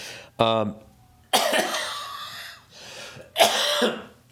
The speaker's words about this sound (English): This fucking goddamn cough. So fucking ironic. I quit smoking and now I get a bad cough.